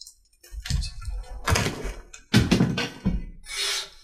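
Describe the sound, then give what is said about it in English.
A bottle that a player was chewing on is snatched out of their hand and thrown across the room, giving a run of four loud, hollow thuds and clunks in uneven rhythm, followed by a brief fading hiss and rattle. “Sorry, Fenrir gets distracted as one of the players begins chewing on a bottle and it requires to snatch out of the player's hand and launch it across the room.”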